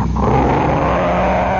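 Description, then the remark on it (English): A voice imitates the roar of race cars hitting the starting line after the first lap: one loud, sustained growling rumble lasting under two seconds, rough and steady, with no talking around it. “There's that enormous roar that shakes the ground.”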